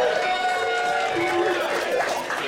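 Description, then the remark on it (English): An audience at a show in Denver, Colorado applauds and cheers for the sponsor Roasty Ghost Coffee, a steady wash of clapping mixed with overlapping whoops and raised voices, holding at an even, fairly loud level for a couple of seconds. “Round of applause for Roasty Ghost Coffee.”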